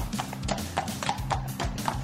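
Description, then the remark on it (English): Army horses' hooves clip-clop in a steady, even rhythm on a hard surface at a modern army building with stabling for 140 horses. Several sharp knocks sound over a low background rumble. “an indoor riding school, a veterinary clinic, stabling for 140 horses, a saddler's workshop and a tailor's workshop where all the tack is stitched by hand, and the largest, most modern blacksmith's forge in the army.”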